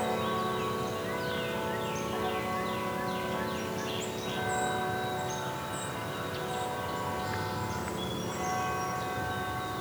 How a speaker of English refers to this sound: I think I'll have to wait for these bells to be done to really hear it properly.